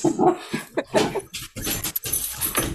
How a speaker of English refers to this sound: I'm being attacked by dogs.